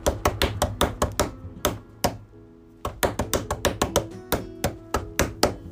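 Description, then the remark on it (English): Rhythmic tapping and banging on a table by someone keeping himself busy while waiting: a quick, steady run of sharp, resonant knocks, a short pause partway through, then the beat picks up again. No one speaks. “So he starts tapping and banging on the table.”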